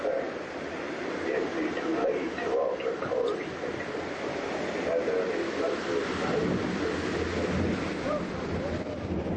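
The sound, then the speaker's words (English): A ride boat rushes down the first waterfall drop of the ride in almost complete darkness, a steady loud roar of churning water and low rumble filling the whole stretch, with muffled voices underneath and no distinct single splash. “As soon as we get to the bottom, a little splash, and we start hearing the Yo-Ho, Yo-Ho theme song”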